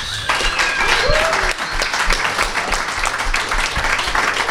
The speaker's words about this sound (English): I have a small group of friends here. We did a really fun barter party for the clouds and dirt. So I want to first, let's clap it up for each other.